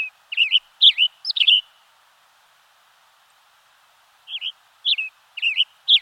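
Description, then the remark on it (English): A male western tanager gives loud, sharp chirps from the branch of a Douglas fir, in quick bursts of three or four. A couple of seconds of quiet follow before another run of chirps, with no voices. “A male western tanager chirps loudly from the branch of a Douglas fir.”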